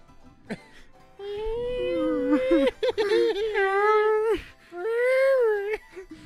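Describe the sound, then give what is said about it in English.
A cat screams outside in long, wavering, high-pitched wails, two drawn-out cries separated by a short gap, loud and strained with a whining, almost baby-like tone. “Sounded like a cat hair.”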